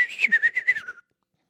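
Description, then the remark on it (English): A person whistles to call a canary: a short warbling trill, one steady note pulsing rapidly about seven times for roughly a second, heard alone, then silence. “Whistle for your canary before 7 a.m.”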